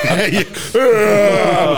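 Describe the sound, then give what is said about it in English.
A man lets out a long, drawn-out yawn, starting with a few short groaning breaths before stretching into a loud, sustained, slowly falling moan. “He yawns.”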